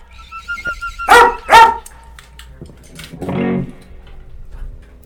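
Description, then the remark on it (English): A dog named Brody lets out two sharp, loud barks in quick succession, followed a moment later by a rougher, lower huffing sound, with quiet background between. “Hold on. Animal control.”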